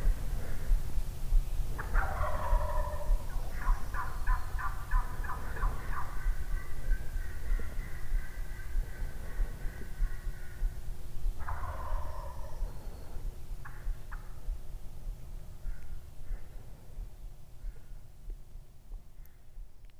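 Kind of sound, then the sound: bird, wild turkey gobbling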